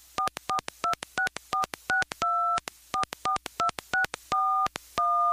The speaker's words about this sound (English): For help, let's make a phone call.